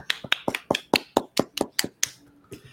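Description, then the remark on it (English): A quick run of about a dozen sharp hand claps in a steady, even rhythm, fairly loud and crisp, ending with a softer final clap, with no voices. “Round of applause, man.”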